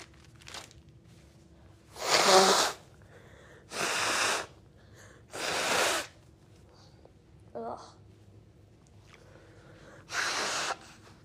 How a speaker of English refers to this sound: Ugh. I need to blow my nose.